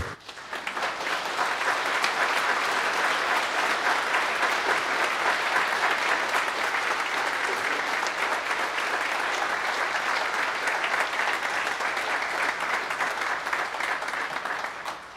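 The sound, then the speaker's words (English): An audience breaks into steady, sustained applause, a dense crackle of many hands clapping at an even volume for about fifteen seconds before tapering off at the end. “I paid somebody to start that clap.”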